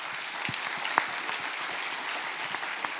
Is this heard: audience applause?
yes